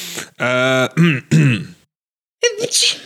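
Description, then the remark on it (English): A loud sneeze bursts out after a few short voiced sounds, followed by a brief pause and a second sharp, breathy burst. “Gesundheit.”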